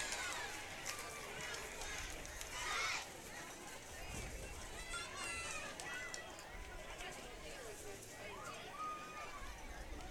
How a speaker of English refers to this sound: Well, you can just see it out there. The crowd's just buzzing with joy.